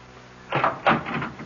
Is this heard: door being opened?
yes